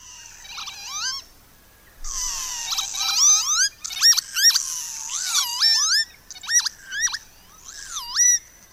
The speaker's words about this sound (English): that sounds like a message coming from outer space to planet Earth, doesn't it? Yeah, I've got to say, this is one of my favourite bird sounds, and this is a species which... we need to be particularly mindful of, because it's in serious